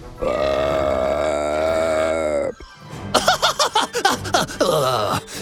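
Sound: long burp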